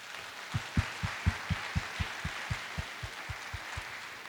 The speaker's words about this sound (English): Parents and pupils and teachers, please join me in another huge round of applause for all of the performers this afternoon.